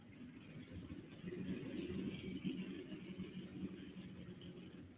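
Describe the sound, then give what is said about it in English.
A big pulling truck, Thumper, running a Sonny Leonard Racing Engines Hemi, rumbles steadily in a continuous low drone that swells slightly partway through and holds without pause. No one speaks. “Also running a Sonny Leonard Racing Engines Hemi.”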